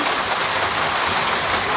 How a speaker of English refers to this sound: Oh, it's thunderstorming, it's lightning, it's raining.